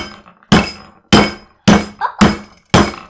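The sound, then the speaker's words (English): Five loud, sharp knocks of a hard, strongly scented seed being banged to crack it open, struck at a steady pace about half a second apart, each ringing briefly before the next blow. No one speaks. “So, it looks like a seed, so we're gonna try banging it up.”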